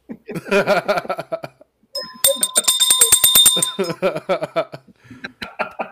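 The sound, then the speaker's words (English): A hand bell, rung each time someone says "he gets it", rings rapidly and repeatedly for a couple of seconds, bright, while people talk and chuckle before, during, and after the ringing. “ring the bell every time someone says he gets it.”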